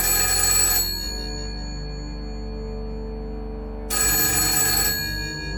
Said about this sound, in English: A nearby restaurant gets a phone call with an order.